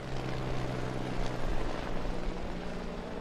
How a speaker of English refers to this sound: I see Rick Hendrick's red helicopter is taking off from behind us. Oh, it's going to fly right over us here.